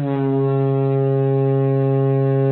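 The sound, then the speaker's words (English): A single loud, sustained ship foghorn blast, a deep steady droning tone with rich harmonics that holds unbroken for a couple of seconds, prominent with no talking. “Foghorn.”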